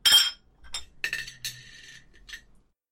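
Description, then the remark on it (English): Dishes and glassware on a service tray being carried clink and rattle together in a short burst of bright, ringing impacts, with a loud first clatter followed by several lighter chinks and a brief sustained ring. “Iria, you have to be more cautious when carrying service trays, said Demyr.”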